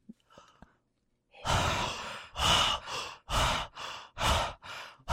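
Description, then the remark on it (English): Two people breathe heavily and theatrically together, loudly, in a rhythmic run of about six big exaggerated inhales and exhales after a short quiet lead-in, with no talking. “can you do the breathing with me?”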